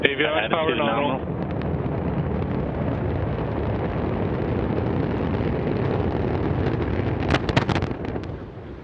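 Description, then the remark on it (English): A brief band-limited voice opens, then the Antares rocket's main engines, at 108%, roar at liftoff, launching the Cygnus spacecraft on its third cargo resupply mission to the ISS: a dense, sustained, rumbling wall of noise, steady throughout with sharp crackling bursts near the end. “And we have liftoff of Antares, the Dwarf 3 mission, that brings Cygnus on its third CRS mission to the ISS.”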